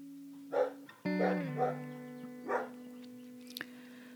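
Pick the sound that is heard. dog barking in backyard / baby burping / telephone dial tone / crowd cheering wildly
dog barking in backyard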